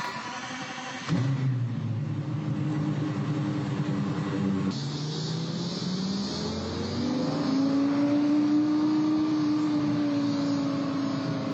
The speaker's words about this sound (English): The car that started us off today was a 2011 Lexus LFA. The LFA was made from 2010 to 2012, and it had a 4.8 liter even firing V10, a pretty awesome car, and it sounds wonderful.